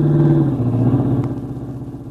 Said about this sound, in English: Duck down under the wheel, Charlie. Duck, here comes the car.